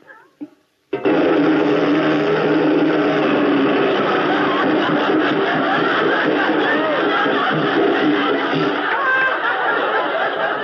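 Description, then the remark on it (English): A riveter's hammer hammering in a loud, rapid, continuous rattle that starts abruptly after a brief pause and holds steady for about ten seconds, harsh and buzzing with no talking over it. “Look, a riveter's hammer.”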